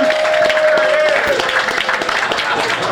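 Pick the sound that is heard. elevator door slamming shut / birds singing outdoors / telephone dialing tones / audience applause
audience applause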